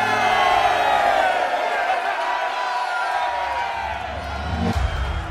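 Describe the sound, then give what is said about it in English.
A packed crowd of townsfolk in a tavern cheers and whoops loudly as a party enters, many voices overlapping in a sustained roar of excitement with shouts rising above the din, steady throughout. “The horse was packed with townfolk, and when the party entered, the crowd threw up such a cheer that it knocked dust loose from the rafters overhead.”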